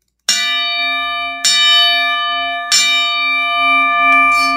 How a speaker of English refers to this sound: And he was very happy that I texted him and told him that I got a bell. I actually went to the thrift shop and I bought like a bell that you would use for like an octagon match